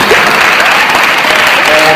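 An audience applauds steadily, a dense wash of many hands clapping at once, loud and sustained for the whole two seconds without any break.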